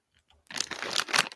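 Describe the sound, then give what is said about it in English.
Loud crunching of veggie straws: after a couple of faint ticks, a dense burst of crackly, bright chewing noise fills about a second, with a sharper crunch near the end. “These veggie straws are very crunchy. Yes, they're very crunchy and loud and gross.”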